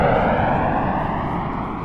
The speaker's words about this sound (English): C, an airplane engine?